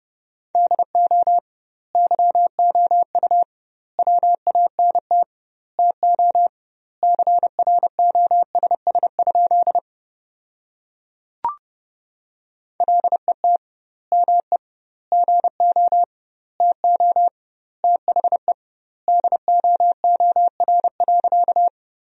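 A steady mid-pitched tone keyed on and off in quick dots and dashes at 30 words per minute, sending Morse code sentences built from the top 300 words with double word spacing, longer pauses between words, plus a single sharp click midway. No voices.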